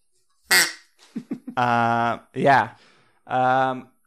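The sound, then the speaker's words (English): A duck call blows three loud, drawn-out nasal quacks, preceded by a sharp breathy burst and a few quick clicking chuckles, with short pauses between each blast. “I can't remember who, but duck call to you.”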